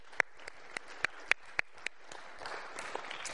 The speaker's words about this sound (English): Thank you so much. I know you did, but give him another round of applause.